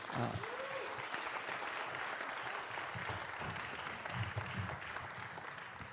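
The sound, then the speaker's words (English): An audience at a Whatcom County school board candidate forum claps for the candidates steadily for the full six seconds, a dense, even wash of many hands with no pauses, fairly loud throughout, with a faint murmur of voices underneath. “And if you could give these candidates another round of applause.”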